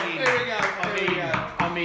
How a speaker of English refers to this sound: I mean, a round of applause from everyone.